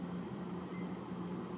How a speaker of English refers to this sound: Apparently, that's not off. Okay, that's off. I'll turn that freaking air conditioner off.